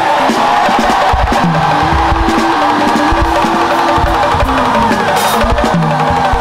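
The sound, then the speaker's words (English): A large crowd shouts and cheers continuously at high volume, many voices blending into a dense, roaring wall of sound with rising and falling yells throughout. “If you know that nothing will take your song from you, nothing will take your dance from you, nothing will stop it till eternity, let your shout be greater than every shout here.”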